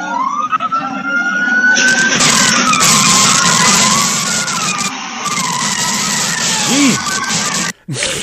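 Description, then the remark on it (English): A bus grinds and shoves through two small cars blocking it, with loud, sustained tire screeching and rising engine whine, sirens wailing underneath, intense throughout with a brief cutout near the end. “And the bus is just trying to tank right through these cars.”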